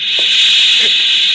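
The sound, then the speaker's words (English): Steam jets steadily out of a boiler safety valve, a loud, unbroken high-pitched hiss that holds constant throughout, with a couple of faint low clunks underneath. “As long as steam escapes through that safety valve, there's no fear of the boiler blowing up.”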